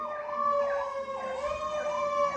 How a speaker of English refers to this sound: Sorry, there's all these sirens going off, so I'm just going to hold off for a second.